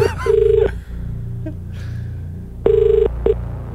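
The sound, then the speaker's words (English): A telephone rings with short electronic warbling bursts, one near the start and another after a pause, loud over a low, steady background hum. “phone's ringing.”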